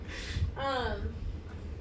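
A single sneeze: a breathy, hissing burst followed by a short voiced sound that falls in pitch, fairly soft overall, with no talking around it.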